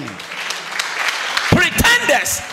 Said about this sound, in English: Why are you clapping like that? Are you a suspect yourself?